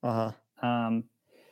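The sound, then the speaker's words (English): Two loud sneezes in quick succession, each a strongly voiced burst lasting under half a second, followed by a faint breathy rustle. “Bless you.”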